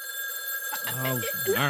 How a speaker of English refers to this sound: The phone is ringing. Answer it.